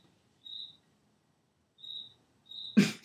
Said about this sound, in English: How do y'all think a cricket makes this noise? That's definitely like a it's whole lot of cheeks. Yeah, nah. It's definitely clapping. It's clapping his cheeks.